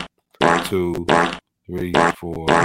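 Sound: fart sound effect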